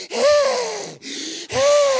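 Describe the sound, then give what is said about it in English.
A voice imitates wheezy, out-of-breath panting: three loud, raspy gasping breaths in a row, each with a breathy whistling tone, no words spoken. “And you find that as you're running the bases, you're a little wheezy, and you're a little out of breath, and you get to first base, and you say, am I only at first base because I'm breathing like this?”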